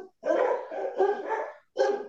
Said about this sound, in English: None of us know what it's like to have barking dogs.